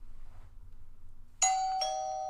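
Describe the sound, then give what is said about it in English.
A doorbell rings with two quick bright chime strikes whose tones hang and slowly fade, following a second of quiet low background hum. “Someone's at the door.”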